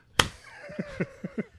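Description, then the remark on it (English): A sharp, loud hand clap rings out as a slow clap, followed by several soft, muffled thumps and a faint gliding tone, then another crisp clap at the very end. “He gets one clapper.”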